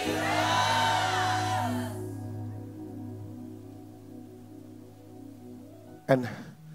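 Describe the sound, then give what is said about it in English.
A large audience screams the name Jesus together in one loud, sustained roar lasting about two seconds, then it dies away into a low steady hum, with a brief sharp burst near the end. “His name is who? Oh, I didn't hear that well. Jesus. Scream it like you can.”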